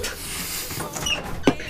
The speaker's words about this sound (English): Could you open the door?